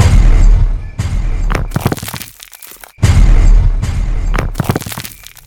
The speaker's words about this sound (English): The blast was spectacular. The force of the explosion vaporized Angela instantly. I was knocked face first into the grass and slid forward about 4 feet.